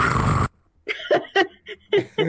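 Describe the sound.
A voice does a deep purr, a loud rough rumbling burst lasting about half a second, followed by a few short voiced sounds after a brief pause.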